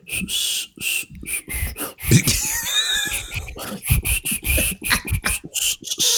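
Raspy slurping through a straw from a drink that is basically gone, with only a little juice and foam at the bottom; a steady run of airy, sputtering sucks and gurgles with a brief squeaky, whistling tone partway through.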